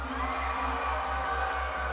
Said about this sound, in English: The crowd cheered.